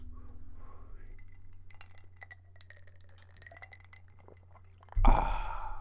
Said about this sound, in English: Sorry about that, ladies and gentlemen. Had to take a little sip of my drink, cool the throat after a nice little bong toke.